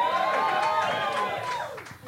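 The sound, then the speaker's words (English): A crowd cheers and shouts together in a steady, energetic burst lasting about two seconds, then tails off quickly at the end. “You don't have to cheer it every time.”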